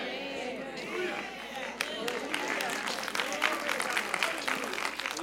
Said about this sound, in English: You can see your tepid clapping.